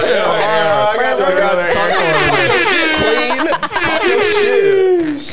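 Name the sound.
air horn sound effect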